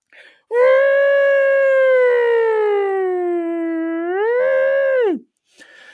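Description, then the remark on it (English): The siren of a fire truck leaving the station to put out a fire lets out one loud, sustained wail for about five seconds, its pitch sagging slowly, swelling up briefly, then dropping away abruptly. No voices. “And then all you hear is, so then even any prospect of going to sleep was destroyed by a fire truck flying out to put out a fire.”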